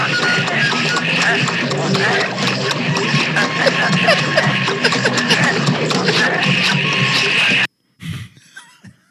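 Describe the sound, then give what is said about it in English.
A crowd slurping and drinking at a river: a loud, steady mass of wet sucking and gulping with constant clicks and babble, which cuts off abruptly, leaving a few quieter slurps. “But here's what the scene sounds like when everyone is drinking at the river.”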